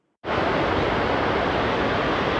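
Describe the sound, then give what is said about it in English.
Heavy rain comes in abruptly and keeps up a loud, dense, steady roar of hiss and patter close by, with no voices over it. “This is what it sounds like in the pool right now with the rain. The rain is crazy.”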